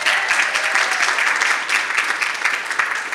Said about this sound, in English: Let's do one more round of applause.